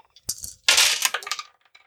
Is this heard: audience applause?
no